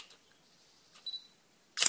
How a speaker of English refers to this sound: Fortunately, I've not got my... there you go. Did you hear it? I've not got my long lens on, and it's not within handy reach. But there we are. I've taken a shot of the goldfinch.